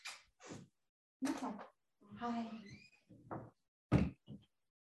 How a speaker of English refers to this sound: Let me just close this door.